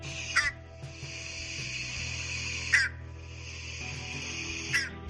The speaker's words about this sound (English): multiple sources I looked into say that the call is a toad-like honk